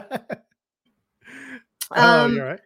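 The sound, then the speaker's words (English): Someone clears their throat: two short, sharp bursts, then a breathy rasp and a click, ending in a brief voiced grunt or hum. “I had something in my throat.”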